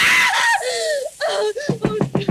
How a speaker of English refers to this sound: What on earth is wrong? Why were you screaming?